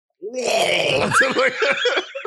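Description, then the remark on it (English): A person makes a loud, drawn-out gurgling throat noise, a rough rattling groan that wavers in pitch for about two seconds, with no speech. “How loud can you gurgle?”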